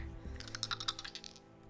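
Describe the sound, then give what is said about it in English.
A quick flurry of small hard clicks and rattles as many dice are rolled and tumble together, fairly quiet and lasting about a second with no one speaking. “That's a lot of dice.”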